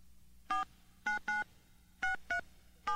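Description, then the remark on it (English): A quick series of six touch-tone beeps as a phone number for the Rahway Hospital is dialed. Each is a short, clear dual-tone blip in an uneven rhythm over a faint background hum, with no one speaking. “Let me try this number here again at the Rahway Hospital.”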